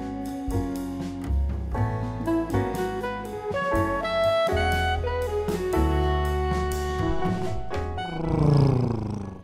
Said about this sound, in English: Let me start the car. I'm on a different car.